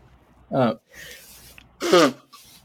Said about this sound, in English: And you'll have to excuse me. I'm going to sneeze for a moment.